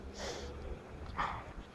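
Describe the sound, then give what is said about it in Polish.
A dog lets out two short, breathy snorting sounds about a second apart, moderately loud, with no one talking, during a walk in nature among grass and bushes. “Pies.”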